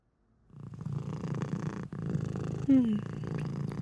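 A cat purrs steadily, a low rumbling drone that continues throughout, with a brief higher meow-like chirp partway through.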